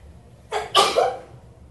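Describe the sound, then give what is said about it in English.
A single sharp sneeze bursts out, a quick breathy intake followed by a loud explosive release that fades within a second. “Bless you.”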